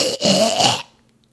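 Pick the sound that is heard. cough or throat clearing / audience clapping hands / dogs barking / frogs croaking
cough or throat clearing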